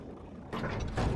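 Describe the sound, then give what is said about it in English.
A big video-game door opens after a switch is pushed, and a robot goes through: a low mechanical hum gives way to a sudden loud, grinding rush of machinery that swells once more near the end, with no voices. “And big door opens, and the robot goes through.”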